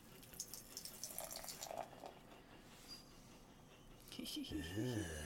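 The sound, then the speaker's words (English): Utah Brewing Buffalo Soldier Black Rye IPA, a 7.6% alcohol black beer, pours steadily into a glass, a continuous splashing, fizzing stream that turns fuller and more resonant near the end as the glass fills. “I'm going to pop my top. Oh, my top. Nice. And the pour.”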